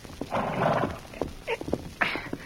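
Horse hooves clip-clop in a loose, uneven rhythm as a rider leaves on horseback, a handful of sharp knocks spread across a couple of seconds, following a brief rough, breathy burst near the start. No one speaks.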